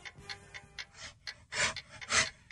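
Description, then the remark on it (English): A grizzly bear growls in two harsh, breathy bursts after a few short, rough huffs, each rasping blast loud and noisy with a rumbling low edge, no voices. “Pull up the grizzly bear sound. I want to hear the grizzly bear sound. Growl. Here we go. Grizzly bear growl.”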